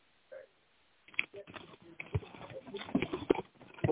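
Papery rustling and clattering after a brief soft tap, like sheets of paper being dropped and gathered, with a quick run of scattered crinkles and knocks over a few seconds.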